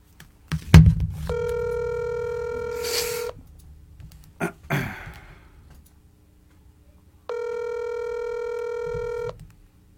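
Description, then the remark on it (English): A phone call ringing out to a group of people at a watch party: a few handset clicks and button taps, then two long, steady electronic ringback tones separated by a quiet pause, clear, with no one answering. “I'm going to call all of you until one of you answers the phone.”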